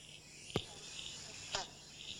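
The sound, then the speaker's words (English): Two short, sharp banjo frog 'bonk' calls about a second apart at a dam, ringing out clearly over a steady background chorus of chirping insects. “Now, if you go to our dam right this minute, that's what you'll hear. You'll hear the banjo frog.”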